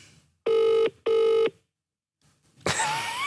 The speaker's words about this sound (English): Here we go. It's not going to ring. It's ringing. Oh, my God. Oh, my God. Oh, my God. It's ringing. Why is it ringing? This is his number. Oh, my God.